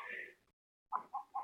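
A bird honks at one of the chickens in eastern Washington, overlooking Lake Chelan, in mid-May: a drawn-out nasal honk, a brief silence, then three more honks in quick, evenly spaced bursts. The calls are fairly loud, with no talking.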